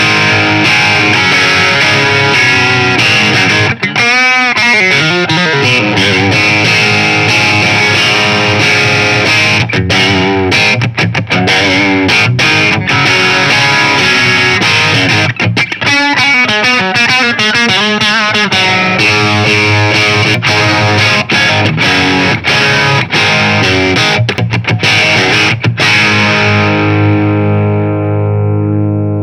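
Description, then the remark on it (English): Crunchy overdriven electric guitar on the bridge pickup, strummed chords and riffs with a gritty, bright distortion, played loud and alone, ending on a sustained ringing chord. “Cool sound, so let's go with a crunch sound.”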